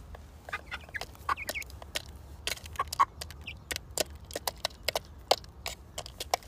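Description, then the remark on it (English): Several hungry, hand-reared chickens cluck and peck, a busy scatter of short sharp clucks and scratchy taps over a low steady background hum, with no one talking. “They're lovely little birds.”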